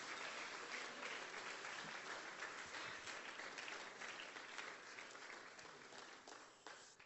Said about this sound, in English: Will somebody clap your hands and praise Him and magnify Him?